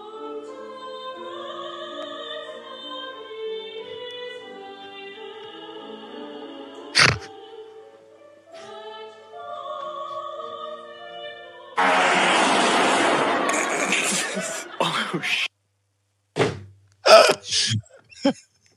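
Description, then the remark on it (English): A loud, aggressive fart in a church erupts as a raspy, noisy blast lasting a few seconds, then breaks off into several short, sharp sputters, following a stretch of steady tonal humming. “That is the most aggressive fart I've ever heard.”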